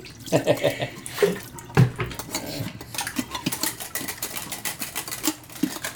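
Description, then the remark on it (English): Water runs steadily from a tap while something is washed beneath it, a continuous hiss broken by several sharp clinks and clatters of cutlery and dishes knocking together. “Okay, I think I'm done washing.”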